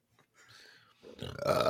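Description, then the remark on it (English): A single loud, drawn-out burp that swells from a faint rasp into a rough, gurgling belch, growing louder toward the end. “All right, I'm just gonna be disgusting this episode. I'm sorry.”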